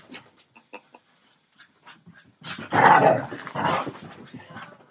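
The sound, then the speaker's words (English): A female blue heeler puppy yaps and growls in short, scattered bursts while running around at night, then lets out a louder, longer stretch of snarling barks before trailing off. “My dog has a night crazy stall. She's running around.”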